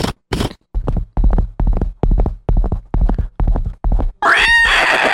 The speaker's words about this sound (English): And so the soldiers, they galloped on the horses.